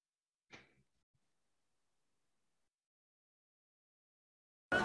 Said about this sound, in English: All right. So let's slap him.